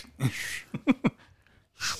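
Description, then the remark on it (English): Someone tries to whistle through a too-large gap in their teeth but only gets breathy, hissing blasts of air with no clear tone, two airy bursts separated by a few short grunting vocal sounds. “I can't hit the whistle.”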